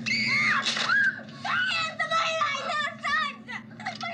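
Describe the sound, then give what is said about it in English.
Two high-pitched voices scream over each other in loud, wavering bursts after two characters bump into each other in a Halloween boogeyman scene, rising and falling for several seconds with hardly a pause, intense. “And then he bumps into Lindsay. They both scream.”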